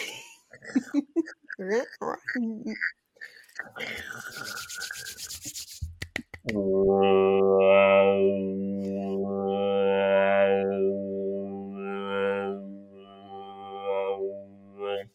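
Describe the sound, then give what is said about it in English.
After a few seconds of talking, a voice imitates a didgeridoo: a loud, low, buzzing drone held for about eight seconds, its tone wobbling and warbling in slow, rhythmic pulses. “That was my impression of a didgeridoo.”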